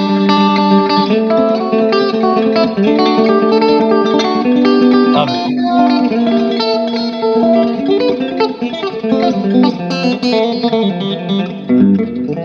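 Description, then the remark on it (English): A loud electric guitar with effects plays fast, continuous rolling picked patterns, banjo-style, with dense repeated notes and steady rhythm throughout, no voices. “Like all of those kind of banjo-y rolls.”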